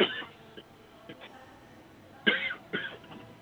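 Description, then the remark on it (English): A few sharp coughs: one at the start, then a quiet pause with faint throat sounds, followed by two louder coughs in quick succession near the end. “I'm coughing.”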